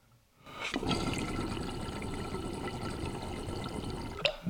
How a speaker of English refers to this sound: And then when she drains, a little pop of water shoots out and then lands back on top, just because of the back pressure of this piece.